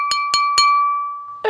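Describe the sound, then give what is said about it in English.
Three quick clinks of something tapped against a glass at a party to make a pregnancy announcement, evenly spaced, each leaving a clear sustained ring that hangs in the air before a burst of talk cuts in at the end. “They're going like this. Wait, no. That doesn't sound top of the glass.”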